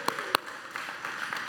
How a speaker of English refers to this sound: Guys, can we give them a round of applause? Oh, we can do better than that. Come on. We wouldn't be here without them, right?